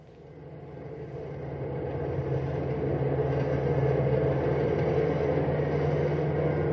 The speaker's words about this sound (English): Big Sandy Thomas is pushing his cross-country bus as hard as he can and yet drive safely. The large vehicle has a full load of 55 sleeping passengers as the bus roars through the night.